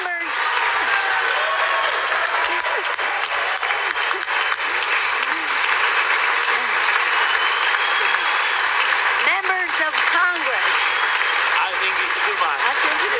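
Loud, sustained applause from a large audience, dense clapping with cheers and shouts rising above it, steady throughout without a break.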